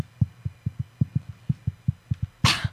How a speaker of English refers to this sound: did you know what you just said? I just tapped the mic randomly. Nothing better than Morse code.